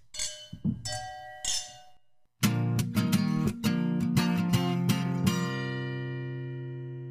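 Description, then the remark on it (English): Wine glasses clink together in a toast several times in quick succession, bright, their ringing tones overlapping and then fading slowly. A few softer knocks and rustles come first. “So, hey, sip, cheers sip, to that.”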